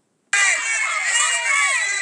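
A dense roar of high-pitched screaming and crying from a large crowd of young women in disbelief at being near a famous band during its arrival in the United States starts abruptly and holds at a loud, steady level, with overlapping shrieks and cries.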